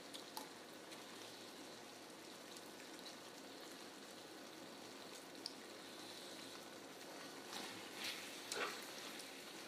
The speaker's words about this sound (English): Definitely added too much water, so I might boil it down here.